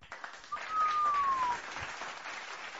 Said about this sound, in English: Giving y'all a big round of applause.